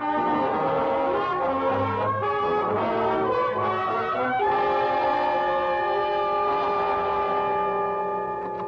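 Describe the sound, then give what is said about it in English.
A passing train's horn blares loud and steady in a sustained multi-tone chord over low rumbling, holding for several seconds before easing off slightly at the end. “Away from trains, gentlemen.”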